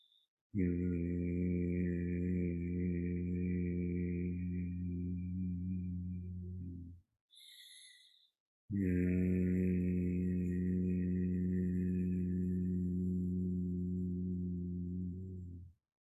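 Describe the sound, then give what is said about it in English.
Two long, steady, low closed-mouth hums on the exhale during a palm hum eye exercise, with hands cupped over closed eyes, each sustained for about six or seven seconds, separated by a short breath in through the nose. Fairly loud, with no talking. “This is the one where you rub your hands together, you cup them over the closed eyes, you breathe in through the nose, and on the exhale, you keep your mouth closed, you make a humming sound.”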